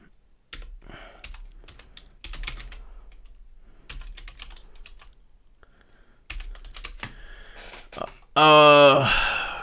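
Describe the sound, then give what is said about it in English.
Rapid clattering keystrokes on a computer keyboard in short bursts, fairly loud, as someone pulls up game stats, ending with a louder harsh rushing burst near the end. “Let me do my best Bud Elliott and bang on this keyboard for a second and pull up some game stats.”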